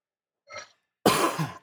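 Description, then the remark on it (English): A soft, breathy intake is followed by a loud, harsh cough, rough and throaty, with no talking around it. “I've been coughing a lot.”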